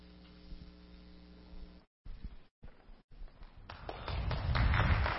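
A steady electrical hum gives way after a few abrupt cuts to a swell of audience applause, many hands clapping together and growing louder toward the end.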